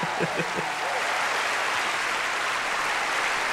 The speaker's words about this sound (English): Hell, I'll even give you a little applause for that.